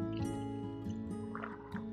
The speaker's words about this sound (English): Let's take another sip of water and we'll finish up the show.